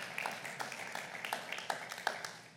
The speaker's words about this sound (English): Thanks for clapping.